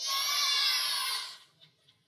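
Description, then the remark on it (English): A crowd of children yells their favorite thing about Christmas all at once, a loud jumble of overlapping high voices that bursts out together, holds for about a second, then quickly dies away into near silence. “When I count of three, I want you to yell it loud and proud.”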